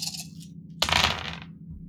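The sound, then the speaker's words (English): Dice, including panic or stress dice, tumble onto a hard tabletop for a comtech skill roll in a sudden burst of sharp clattering that rattles on for about a second before settling, with no one speaking. “Plus my panic dice. My stress dice.”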